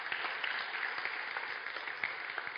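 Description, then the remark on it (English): A crowd claps steadily, a dense, continuous patter of many hands with small bursts of sharper claps rising above it, and no voices. “Why don't we give them a big clap?”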